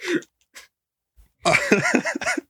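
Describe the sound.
A sharp cough is followed after a pause by a longer, loud fit of several harsh coughs mixed with strained, voiced sputtering.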